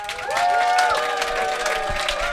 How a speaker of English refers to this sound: Right. Let's have a round of applause for our brilliant panel.